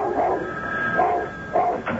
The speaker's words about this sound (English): Every time the phone rang, he barked and barked and barked till Joan answered it.